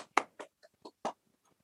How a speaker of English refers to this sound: Let's give her a little clap. Come on, my guys, let's do it.